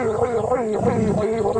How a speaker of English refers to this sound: There it is. Those are two jaguars.